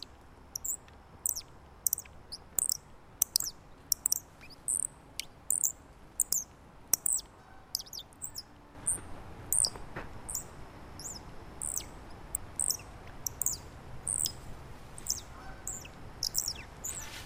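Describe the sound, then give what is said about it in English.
An Audubon bird call device chirps over and over, a quick run of thin, squeaky high-pitched tweets in irregular bursts, clear against a low background hiss that thickens halfway through. “AUDOBON BIRD CALL”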